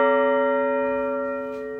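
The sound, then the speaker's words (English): A church bell, rung in a change-ringing sequence, rings out with a rich, sustained tone, its humming overtones hanging in the air and slowly fading over a couple of seconds, with no one talking. “This is how the bells would have sounded around Norfolk, England in 1630 as these first settlers were getting on a boat to come over here and try to reinvent their world.”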